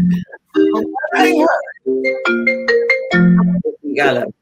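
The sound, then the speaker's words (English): A loud, melodic phone ringtone plays a tune of sustained electronic notes that step up and down in pitch, with short gaps between phrases, lasting several seconds. “Hang on. It's my bookie.”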